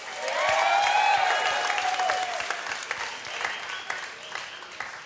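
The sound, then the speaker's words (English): A crowd claps steadily and loudly for about five seconds as comedian Kira Soltanovich is introduced, with high whoops and whistles rising over it early on before the clapping thins out slightly. “I need all the applause again.”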